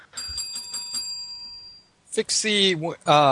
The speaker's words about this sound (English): Bell. It's like a like a hotel bell.